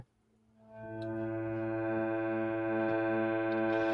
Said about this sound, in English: But we can also have it as a musical instrument, and there's lots of musical instruments that make drones. This is a harmonium, which is like a bellows with keys on it.